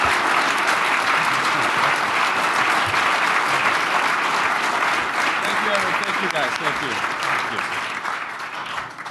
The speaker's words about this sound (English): So please, another round of applause for Victor.